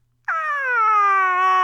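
A woman, the character Vicky, lets out a sudden, sustained high-pitched scream that starts abruptly after a brief silence and holds steady and loud, slowly dropping in pitch as it goes on.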